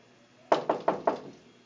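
Four sharp knocks on an apartment door in Brooklyn in quick, even succession, fairly loud, with a short resonant ring after each hit and quiet background before and after.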